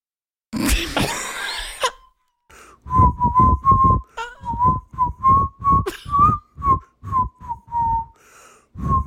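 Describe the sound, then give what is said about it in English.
Someone whistles a short, choppy series of clear notes at a steady pitch, following a burst of breathy, noisy sound at the start. “My whistling's so good that you think it was assisted?”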